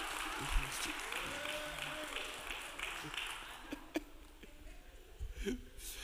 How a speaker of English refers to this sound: Clap your hands if you're looking for him to give.